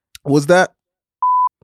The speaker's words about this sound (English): And don't say her name. Let's just keep her anonymous. Just say was that, and then you put a beep in.